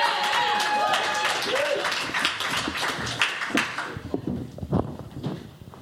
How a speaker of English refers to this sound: Put your hands together, everyone, for James Harris! It's coming from the back, so keep those claps coming.